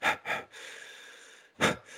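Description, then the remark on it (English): Someone imitates heavy breathing with their voice, mimicking Dan breathing as he walks down a hallway in a film scene after the mayor's murder: two quick, loud, breathy huffs, a longer hissing exhale, then another sharp breath, unaccompanied by talk. “And then you cut to Dan walking out, and he's in this hallway, and you hear him breathing.”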